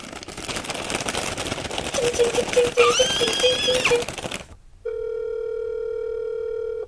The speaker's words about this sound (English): We are going to make a special phone call to our friend, my brother,